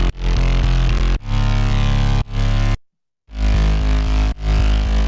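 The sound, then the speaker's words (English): A thick, buzzing synth sub bass plays in sustained chunks with sharp cutoffs and a brief silent gap, its rich harmonics giving a gritty, engine-like growl. No voices are heard. “And then with the sub bass or the other bass.”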